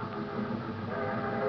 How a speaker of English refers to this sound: The train, Charlie. I was just thinking about the train.